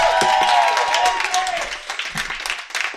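An audience at a comedy show applauds steadily for a few seconds as a performer is introduced, a dense wash of clapping with a high cheer or whistle early on, gradually thinning toward the end.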